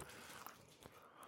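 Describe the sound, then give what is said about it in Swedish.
Someone chews a cat food treat, with soft, moist mouth noises and a couple of brief crunchy bites. The sound is quiet and steady, and nobody speaks. “Det var verkligen kattmats...”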